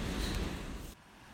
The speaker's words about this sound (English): Yeah. All right, man, let's do it. All right, splash.